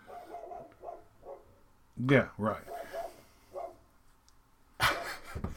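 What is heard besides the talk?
dogs barking outside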